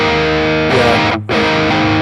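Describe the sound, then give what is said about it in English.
A loud, high-gain distorted electric guitar played through an amp rings out in dense sustained chords, briefly cutting out for an instant before the saturated tone returns at full strength. “I just go from a high gain sound to...”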